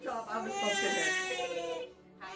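A baby screams and wails on his first Halloween in one long, high-pitched, strained cry with wavering harmonics, loud and sustained, trailing off briefly before a new cry starts at the end.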